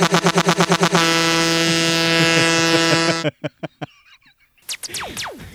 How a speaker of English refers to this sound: Yo, play the truck noise.